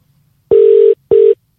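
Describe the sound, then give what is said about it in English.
Two steady electronic ring tones of a phone call being placed to connect with a guest, a longer burst followed by a shorter one after a brief gap, clear and loud with no voices. “I hope it does, because I can see the phone, I can hear the phone ringing.”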